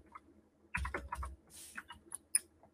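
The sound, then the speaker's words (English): Rapid, uneven clatter of keys on a computer keyboard, fairly quiet, with a few heavier thumps early on and scattered crisp clicks afterward, as someone codes a button that shows a pop-up. No one speaks. “Yeah, while you're typing, let me just quickly add,”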